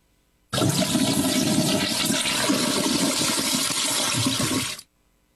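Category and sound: sound effect, toilet flushing sound effect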